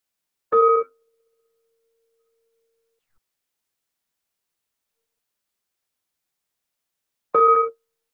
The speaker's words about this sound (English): So what I will do, and I'll just take us through it bit by bit, is I will strike a bell here.